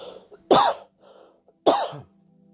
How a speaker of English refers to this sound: Excuse me, I just had to cough.